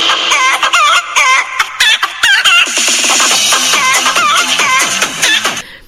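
A flock of chickens clucks and squawks loudly and nonstop, many overlapping calls, with rapid staccato clucking building toward the end and no one speaking.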